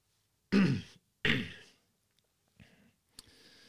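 Two loud coughs in quick succession, each a harsh explosive burst, followed by a couple of quieter throaty sounds as the person settles. No talking.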